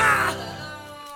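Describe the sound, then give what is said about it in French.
Hens clucking: a loud, raspy, high-pitched squawk bursts out at the start, then trails off into a fainter, sustained nasal tone for about a second. No one speaks. “Oh, là, c'est des poules.”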